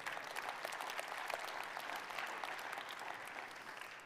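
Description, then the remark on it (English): Half-hearted applause from an audience: a thin, steady patter of scattered clapping that holds at a fairly low level for about four seconds, then begins to taper, with no voices over it. “That's a halfway applause.”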